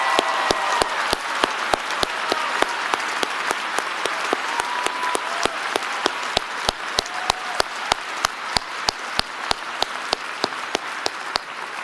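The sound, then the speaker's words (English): An audience applauds a couple who have stood up, a dense wash of many hands clapping the whole time, with a sharp, evenly spaced clap ringing out through it like a steady beat. “Ladies and gentlemen, please give them another round of applause.”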